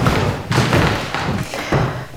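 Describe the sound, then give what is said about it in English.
Heavy footsteps thud at a slow, steady pace up a Jacobean staircase and across creaky wooden floorboards in a stone hall, each step a dull knock with a faint creaky resonance and no voices. “By lots of lovely creaky floorboards, which are fantastic.”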